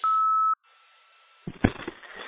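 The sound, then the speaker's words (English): A single steady, mid-pitched beep from a talk show's 24/7 voicemail line sounds loudly for about half a second, followed by quiet line hiss and then some faint clattering, rustling noise. “You guys know what to do, so at the beep, leave your message.”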